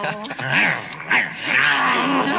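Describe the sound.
A man growls and snarls like a rabid dog as he bites Madeline Kahn's fox, a rough, throaty vocal rumble with wavering pitch, in several harsh bursts over about two seconds.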